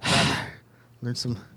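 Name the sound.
heavy breathing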